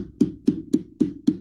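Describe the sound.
Five evenly spaced, hollow clacks in a steady rhythm, each a sharp knock with a low woody body, imitating the empty yellow seats of a Montreal stadium being rocked back and forth and banging on the seat backs. No talking.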